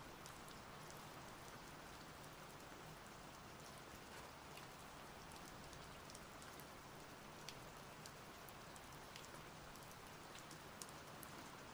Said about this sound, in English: Take a few moments and listen to the healing sound of the rain washing away.